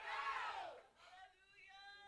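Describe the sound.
A large crowd erupts in a loud, unified shout of "let go" that swells and fades over about a second, followed by scattered cheering and voices ringing on.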